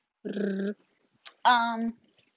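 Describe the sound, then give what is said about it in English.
A dog lets out two drawn-out, whiny growling sounds, fairly loud, separated by a brief pause, with no talking around them. “If you didn't know, my dog is very fake.”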